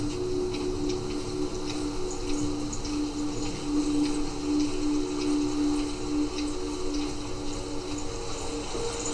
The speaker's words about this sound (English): There's a little waterfall and I see a face in the water.